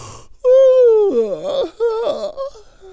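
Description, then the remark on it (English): A narrator acts out the big, drawn-out yawn of Mr. Rabbit lying down for a nap halfway around the race track in the tortoise-and-hare story: a long, loud, steady vocal tone that then wavers and wobbles in pitch before trailing off into a softer sigh. “And he let out a big old yawn.”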